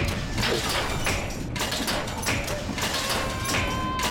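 A clothes dryer is switched on and runs with a steady, dense mechanical rumble, punctuated by irregular clunks and thumps as the load tumbles inside, fairly loud.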